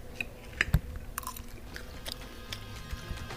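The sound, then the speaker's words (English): Crunchy chewing of a 1905 salad built tableside by a server at the Columbia, a series of crisp bites and crackles with brief sharp transients, quiet and intimate with no talking over it. “And should we give it a taste?”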